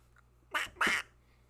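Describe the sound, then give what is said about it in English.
A person's voice imitates a duck with two quick, nasal quacks in a row, fairly loud, each lasting a fraction of a second against a quiet low hum. “My own quacking.”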